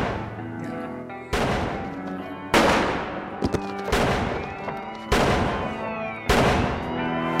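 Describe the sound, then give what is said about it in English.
Six loud gunshots in an exchange of gunfire ring out at a steady, slow pace, roughly one per second, each blast followed by a long, echoing decay that overlaps the next. No one speaks. “All shot once in the chest during exchange of gunfire.”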